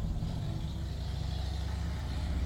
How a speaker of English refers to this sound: Why do motorcycles have to be so loud? I don't know. I really don't. Like, that's too loud. It's too loud.